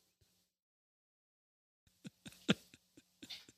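Muffled dog noises from upstairs, a quick irregular series of sharp bursts with one louder bang in the middle, after a stretch of near silence. No one speaks.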